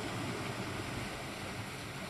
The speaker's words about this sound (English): And as you hear the waves crashing